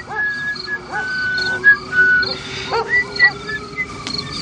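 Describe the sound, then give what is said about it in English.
A man whistles the tune Camptown Races while walking through a backyard, a bouncy string of clear sustained notes stepping up and down at moderate volume over a soft background hum, with no talking. “And then as he's leaving, walking through somebody else's backyard, he's whistling a tune Camptown Races.”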